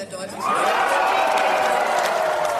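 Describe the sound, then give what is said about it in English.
A large crowd at an SPD election party erupts into loud, sustained cheering as the first exit poll puts the SPD ahead of the CDU. A dense roar of many voices swells up within the first half-second and stays steady to the end. “So as you can imagine, when the first projections came out, especially the first exit poll, one of them which put the SPD at the lead ahead of the CDU, there was a lot of cheering.”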